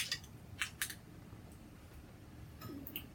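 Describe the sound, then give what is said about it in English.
Two 4.7% ABV beers being opened and poured: a few sharp, quiet clicks and short hissing bursts in the first second, then a low stretch and another soft burst of clicking and fizz near the end. “And I'll just open them both up and pour them.”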